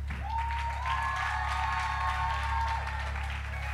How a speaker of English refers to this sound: I didn't ask you to clap, but if you feel like clapping, you might as well do it like a real woman.